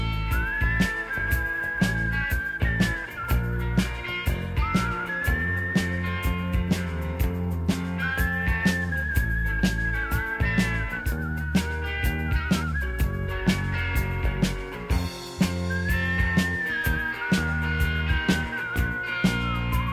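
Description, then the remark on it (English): A person whistles a melody in bright, sliding phrases over a full rock band with steady drums, bass and guitar, the whistled lines recurring every few seconds and sitting clearly on top of the mix, in the closing song of a rock album. “He remarkably finds a little bit of pitch during the whistling parts of this song”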